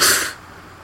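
A single sharp sneeze, a loud, breathy, hissing burst lasting a fraction of a second before fading abruptly into quiet. No talking is heard.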